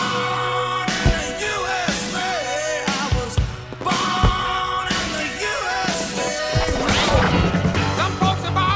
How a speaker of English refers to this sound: Oh boy, I like firecrackers.